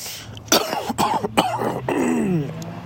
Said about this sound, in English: That was a healthy cough.